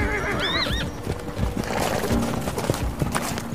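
A horse ridden by a soldier keeping order lets out a short, quavering whinny, then hooves clip-clop steadily on hard ground amid a busy outdoor background, with no one speaking.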